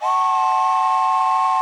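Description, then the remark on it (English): A whistle blown in one long, steady blast, loud, with a full, chord-like tone that holds evenly from start to finish. No one speaks. “Too many pennies to blow into the whistle, but enough to be significant.”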